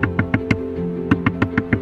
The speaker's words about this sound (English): She hears this frantic knock on the door.